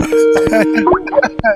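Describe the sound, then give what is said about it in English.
Telephone line connecting tones as a caller is brought onto the line of a show: a steady, low electronic hum holds for most of a second, mixed with shifting beeps and chirps, then quick clicks and short blips as the call connects. “I think we have him coming on the line.”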